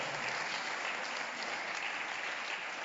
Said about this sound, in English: Now you can clap for that because some of you were holding back.